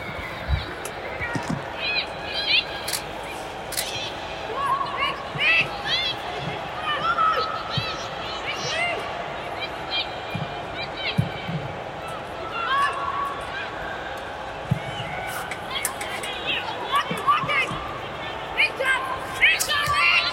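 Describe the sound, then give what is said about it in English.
Scattered players' voices shout and call out across an empty, echoing stadium built for the 2002 World Cup during a game, with occasional sharp thuds and footfalls over a faint, steady wash of low fake crowd noise pumped into the stadium. “So you can hear all the players shouting, and it almost sounds like you're at a local pickup game.”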